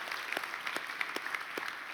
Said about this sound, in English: And that's why we love him. Amen. And that's wisdom. Amen. Clap for that. Amen. Amen.